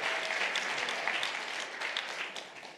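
A church audience applauds their pastor as they prepare for the sermon, with steady, dense clapping that holds at an even level for a few seconds, many hands blending into a continuous crackling wash with no voices over it.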